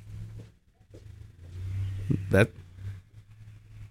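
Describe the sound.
A car engine revs outside, a low rumble that swells and holds for a couple of seconds, with a sharp noisy burst near its peak and faint background voices.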